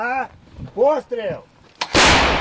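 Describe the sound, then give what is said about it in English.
A few wavering, voice-like tones give way to a sudden sharp crack and then a loud, roaring blast of artillery, mortar or small arms fire near the front lines of fighting, filling the last half-second, harsh. “I mean, you can hear the booms of artillery, mortars, you can hear small arms fire.”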